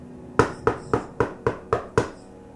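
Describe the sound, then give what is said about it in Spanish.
Seven firm knocks on the front door of a house in a steady, evenly spaced rhythm, each a sharp hollow thud, with nothing else around them and no voices. “Al llegar a la casa de Francisca y pararse frente a la puerta, esta tocó.”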